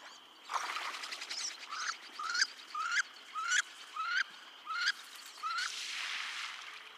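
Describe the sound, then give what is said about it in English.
A wood duck gives a series of about eight rising, squealing calls in a steady rhythm, clear, with a faint hiss of background ambience and no talking. “This episode, our bird spotlight is on the wood duck.”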